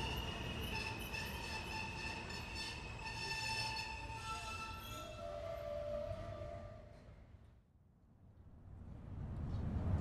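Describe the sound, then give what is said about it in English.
A train rumbles along the rails with steady low-end noise and high, sustained metallic tones like squealing wheels, easing off briefly before the rumble builds again. No one speaks. “He put on his best clothes, took a small bag, went to the station and got into the train.”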